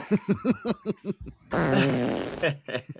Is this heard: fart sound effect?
yes